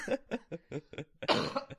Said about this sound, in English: It ended with a, you know, cough.